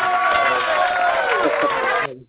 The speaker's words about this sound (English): So I definitely give you a round of applause.